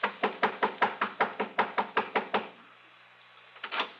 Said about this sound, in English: I was pounding on the front door of the Cartwright home over in Lakewood